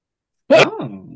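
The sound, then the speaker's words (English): A single loud sneeze bursts out of silence: a sharp, noisy explosion followed by a brief voiced, trailing tail, with no talking around it. “Dude, he muted after the sneeze.”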